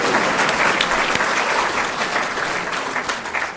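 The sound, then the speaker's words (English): A steady wash of audience applause for Eric McCormick, many hands clapping at once in a dense, loud burst that holds for a few seconds and tapers slightly toward the end. “You can applaud for Eric McCormick.”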